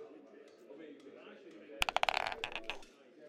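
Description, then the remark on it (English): A luck die is rolled, a quick burst of sharp clattering clicks that bounce and settle within about a second, preceded by a low background murmur. “As you look around, I'm going to roll a luck dice to see if there are any entrances through here into the actual place.”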